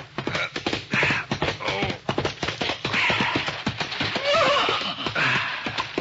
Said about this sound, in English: a horse was pounding along a moonlit trail heading for the home corral.